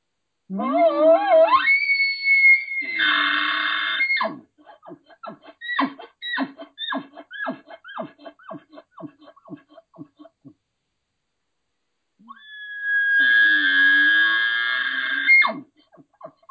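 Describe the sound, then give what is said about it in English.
Two imitated elk challenge bugles, of the kind used for hunting: each begins as a low tone sweeping up into a loud, sustained high-pitched whistle. After the first comes a run of about a dozen rhythmic, grunting chuckles. “These are mainly challenge bugles.”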